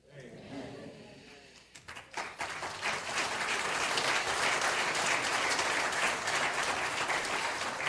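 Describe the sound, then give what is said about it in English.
A church audience breaks into loud, sustained applause for their pastor after a man's voice at the start, the clapping swelling quickly into a dense, steady roar that continues to the end. “They clapped for you.”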